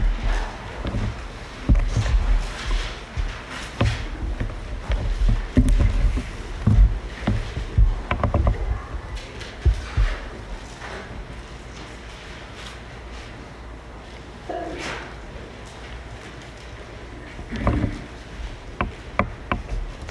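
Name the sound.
bible pages turning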